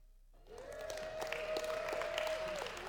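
An audience breaks into applause for the speaker turning 49, a dense wash of clapping that swells quickly and holds steady, with a faint sustained tone running underneath.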